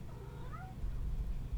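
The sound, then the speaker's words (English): A cat lets out a single drawn-out meow, fairly quiet, over a steady low background rumble that continues after the cry fades. “I'm going to let this cat out.”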